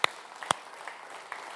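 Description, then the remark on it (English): A few scattered, sparse hand claps from an audience: two sharp claps near the start, then a handful of fainter ones trailing off irregularly, with no one talking. “I think we can clap for that.”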